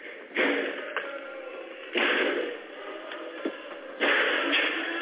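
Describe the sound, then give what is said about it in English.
A man's fist pounds heavily three times on the door of a room where Pelosi's staff are sheltering, the blows evenly spaced about two seconds apart. Each blow is a loud, muffled thud with a brief rattle, and nobody speaks. “Inside, staffers are silent as they record him pounding.”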